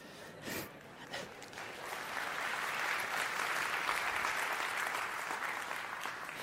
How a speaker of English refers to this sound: Actually, your real applause needs to go to Pastor Bill.